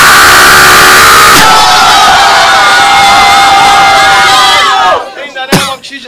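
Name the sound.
audience shouting loudly together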